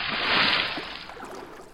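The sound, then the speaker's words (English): A vehicle converted into a submarine plunges into water with a loud, rushing splash that peaks quickly, then trails off into softer sloshing and bubbling over about two seconds, with no voices. “Now we'll just turn on the Portal Hopper's submarine conversion, and into the water we go.”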